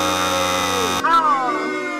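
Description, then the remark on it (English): A loud, harsh wrong-answer buzzer in a sports trivia quiz blares in one steady, rasping burst for about a second after the answer "Red Sox" to a question on the Portland Sea Dogs' MLB affiliate. It then cuts off as a voice reacts over a quieter background. “Wow, that's really aggressive. Yeah, I didn't like make that. That, by the way. I'm sorry about the booze.”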